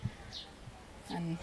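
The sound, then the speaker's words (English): Birds call softly in a quiet, sheltered, shaded spot with bird feeders and tree sparrow nest boxes, away from a visitor centre: a brief high chirp, then a lower, cooing note, both fairly faint against a calm, still background. “And all you can hear is birds.”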